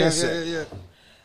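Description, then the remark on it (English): A single loud, voiced sneeze: a breathy hiss bursts out over a strained vocal tone, which then fades away into quiet within about a second. “Bless you.”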